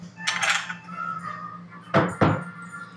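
Glass beer mugs holding Oktoberfest beer clink together in a toast, a bright ringing knock near the start and two sharper clinks close together later, with a low steady hum underneath and no talking.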